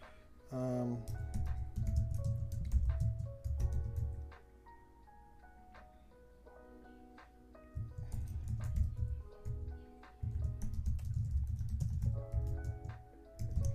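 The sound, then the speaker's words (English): Someone types on a computer keyboard in quick, irregular bursts of crisp clicks, pausing briefly now and then, over a low, steady background murmur. “So I'm just kind of typing and seeing where else.”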